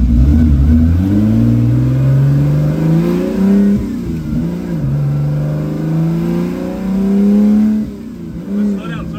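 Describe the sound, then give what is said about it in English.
A loud race car's race-bred V12 engine revs hard as a gated shifter bangs through the gears, its pitch climbing steadily, then dropping briefly at each gear change before rising again, roaring continuously throughout. “With its race-bred V12 engine singing out front, gated shifter banging through the gears, and a mechanical symphony reverberating throughout the aluminum interior, this was my automotive nirvana.”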